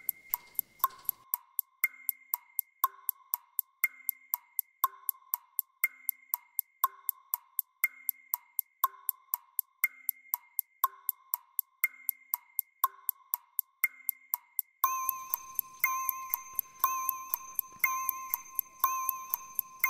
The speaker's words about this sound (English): And your target number is? 723. And the timer starts now.